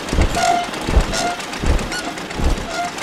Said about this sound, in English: Now, in the distance, I hear an old jalopy. Oh, man. The old jalopy received wings instead of spare parts.